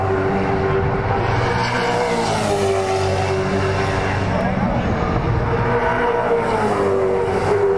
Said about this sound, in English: Definitely see the cars really hook through here too, so it's a great spot for me.